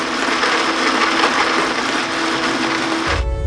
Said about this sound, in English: Activating blender.